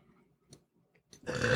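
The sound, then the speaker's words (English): A few faint, breathy sounds, then a loud, abrupt burp erupts and carries to the end. “I'm going to be burping all night.”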